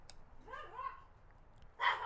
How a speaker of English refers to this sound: All right. Dogs are barking.